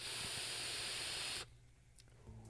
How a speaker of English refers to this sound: And this is my first vape experience with the Recurve 2 RDA. Pretty nice.